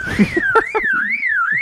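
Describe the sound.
A bird mimics a car alarm, a loud high tone swooping smoothly up and down like a wailing siren, with a few low knocks and clicks scattered underneath.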